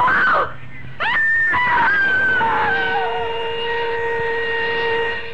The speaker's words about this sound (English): A woman screamed and cried for help on the Wayfield Common. But there was no one within a mile to hear her screams.